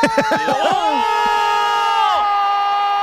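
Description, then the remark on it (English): A loud crowd of football fans screaming and yelling in reaction, opening with sharp overlapping shouts that swell into one sustained, piercing roar lasting the whole moment. “Yeah, I don't speak the language, so I don't know if there was a wide right after all that screaming.”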